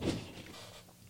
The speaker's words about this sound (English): You just threw your dead phone on the chair?